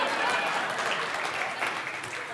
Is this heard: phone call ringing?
no